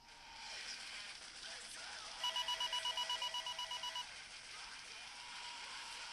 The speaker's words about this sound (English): And also, there's like a phone in the background.